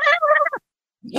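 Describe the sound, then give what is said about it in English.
A person mimics a cat's chattering at birds: a quick, stuttering string of high, nasal clicks and squeaks for about half a second, fairly loud, followed by a pause and a soft rustle. “do you hear that cackle in Serena sometimes when a bird comes nearby?”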